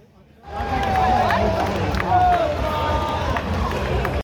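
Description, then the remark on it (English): A large stadium crowd, estimated at a couple thousand people, waits for kickoff on an overcast night and fills the air with a steady, loud roar of overlapping chatter that swells in abruptly and holds, with a few shrill whistles cutting through the din. “Hey, Dad, what do you reckon the crowd is tonight? Oh, a bit hard to tell, isn't it? Probably maybe a couple thousand people, even be much more than that.”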